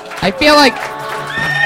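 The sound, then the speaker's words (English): A short, loud horse whinny sound effect, the 'horse of truth' used on the show Kill Tony, with a quavering, descending tone, fading into a softer nicker over about a second and a half. “I feel like, the horse of truth coming out early.”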